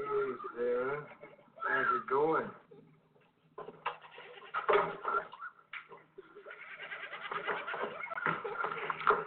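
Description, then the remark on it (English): A person imitates the bleat of a goat named Sarah, a wavering, nasal series of bleats repeated several times, fairly loud, with voices chattering and laughing around it. “Did I mention that Sarah was actually the name of the goat?”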